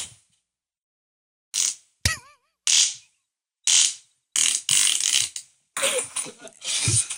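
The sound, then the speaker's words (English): A string of raspy, sputtering fart noises comes in irregular bursts after a brief silence, with short pops at first and longer, buzzy, crackling blasts toward the end. “Who's that fart from?”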